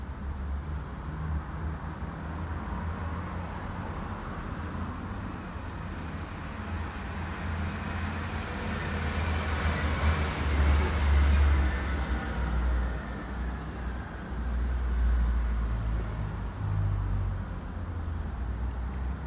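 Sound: car passing by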